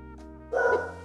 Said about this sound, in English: My dog's barking.